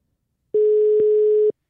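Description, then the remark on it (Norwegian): A telephone busy signal: a single steady, mid-pitched electronic tone lasting about a second, clear, with faint clicks at its start, middle and end, and no voices. “Opptatt.”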